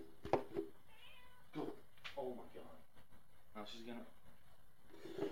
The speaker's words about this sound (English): Freaking cat is all having a hoopla fest over there. Jeez Louise. Hold on. If you're watching and listening, I gotta let the cat out.